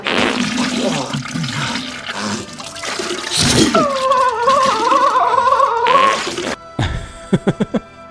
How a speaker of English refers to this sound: I gotta get that in every episode. Probably the single greatest fart sound clip there ever will be. Oh, man. That was so good.